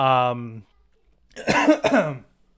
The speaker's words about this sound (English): God, cough.